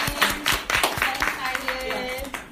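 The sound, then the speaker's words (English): An audience claps in a quick, irregular patter of sharp slaps while voices call out and talk over the applause throughout. “Clap it up for yourself.”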